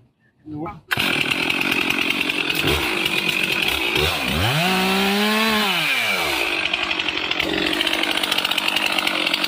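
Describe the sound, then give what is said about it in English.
A chainsaw roars to life after a brief quiet moment and keeps running loud and steady, its engine pitch dipping and rising as the chain bogs down cutting through a tree. “So cut it short, and then you can go between those two pretty easy.”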